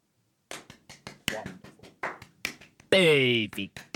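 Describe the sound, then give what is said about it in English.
People clap their hands in a quick, uneven burst of sharp smacks lasting a few seconds, with a loud voice letting out a rising, drawn-out whoop partway through. “Let's clap. Well, are we ready to clap?”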